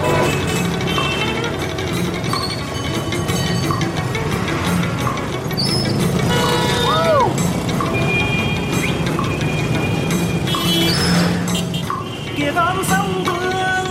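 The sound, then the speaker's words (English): Dense, steady, loud roar of motorbike and scooter traffic filling a city street in Hanoi, with occasional short horn toots and high chirps scattered over the continuous wash of engines. “There is no other way to see this city, Hanoi, than from a motorbike or a scooter.”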